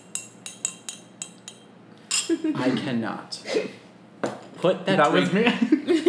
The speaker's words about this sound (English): Put that drink down. That was me sipping on the tea